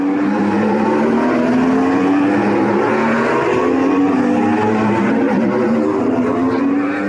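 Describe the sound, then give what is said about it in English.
A loud, steady electric whine from electric-powered Formula E racing cars at the Cape Town E-Prix, with rising and falling tonal pitches layered over a broad rushing roar, continuous for several seconds and no voices. “These electric-powered Formula E racing cars sound very different to their Formula One counterparts, although they look identical.”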